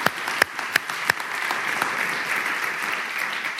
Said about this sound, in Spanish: Y por eso yo quiero que demos un fuerte aplauso a Dios por lo que está pasando.